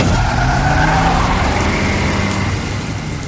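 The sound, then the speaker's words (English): A car engine revs hard and speeds off in pouring rain with a brief tire squeal, its drone loud over a steady rushing hiss, easing slightly as it pulls away. No one speaks. “As we drove away, my eyes remained transfixed on this shadowy figure standing there in the pouring rain.”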